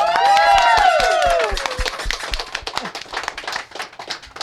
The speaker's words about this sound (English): Can we give a round of applause to Kimmy?